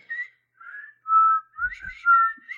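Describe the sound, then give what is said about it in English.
Someone whistles a short, wavering melody from Kill Bill, several distinct notes sliding between pitches with brief pauses, a few soft low thumps underneath near the end. “Whistling. Yes, whistling.”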